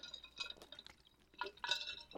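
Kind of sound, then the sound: food or drink, water sloshing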